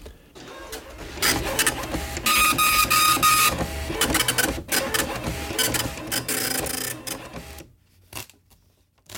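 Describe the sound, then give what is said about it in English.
A printer prints a check, running loudly for several seconds, its mechanical whirring and rapid clattering print head sweeping back and forth before stopping, followed by a couple of faint clicks. “Press P to print a check.”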